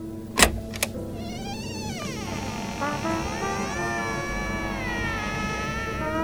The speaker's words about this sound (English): Oh, God, the door's open. It hasn't been open in 6 weeks.